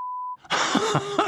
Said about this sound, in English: I looked it and stared it in the eye and I said, you have to bleep this out.